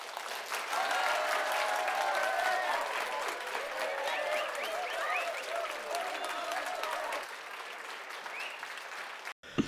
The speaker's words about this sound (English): Let's have a round of applause for the Grey one.